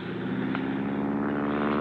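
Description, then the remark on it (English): An airplane engine drones steadily and loudly, a buzzing, harmonic-rich hum that holds an even pitch throughout, with no voices over it. “What's that plane going to do to him?”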